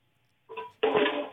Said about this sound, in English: What are you doing? What's all that ruckus in the background? I'm sorry, I'm washing my dishes.